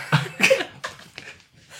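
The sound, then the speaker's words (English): A person sneezes: two sharp, loud bursts of breath in quick succession, followed by a few fainter, shorter exhalations trailing off. No talking. “Bless you.”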